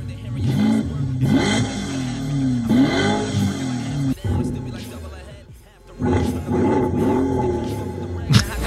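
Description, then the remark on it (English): A Porsche engine revs loudly in three long surges, its growling pitch climbing and falling with each push of the throttle before settling back into a deep idle rumble. “Porsche.”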